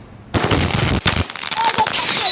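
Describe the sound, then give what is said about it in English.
Consumer fireworks set off for Halloween in Vancouver explode in a loud, rapid burst of crackling bangs, then give way to high, shrill whistling as more rockets screech upward. “But the days of setting off fireworks could soon be sizzling out in Vancouver.”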